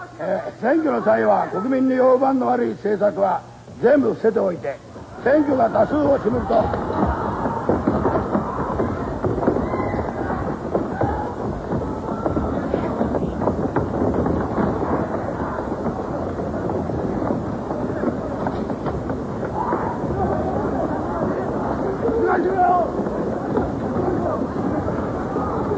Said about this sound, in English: So you could hear at the start there, as Asanuma's talking, you can hear his footsteps across the stage, the do-do-do-do-do-do-do. And then a lot of people start running as he hits him, and then there's just footsteps everywhere.